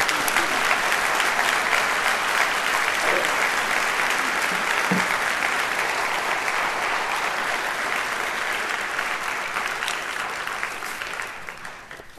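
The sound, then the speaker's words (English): An audience applauds in a dense, steady wash of clapping that holds at an even loudness for about eleven seconds, then begins to thin and fade at the very end. No one speaks. “We don't clap usually.”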